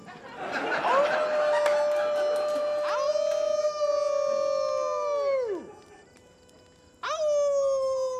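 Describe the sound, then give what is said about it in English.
People imitate a wolf howl with long, sustained vocal wails that swell, hold and drop off in pitch, followed by a second howl starting up; a bit of laughter comes just before. “Suddenly worried that we'll attract some kind of wolf.”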